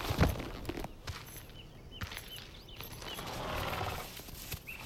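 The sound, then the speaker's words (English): A horse shuffles, its hooves clopping in a few scattered, uneven steps, with a short whinny mixed in over a quiet outdoor background, as its rider rides up to a house, dismounts and ties it off. “I rode up to it, dismounted and tied off my horse.”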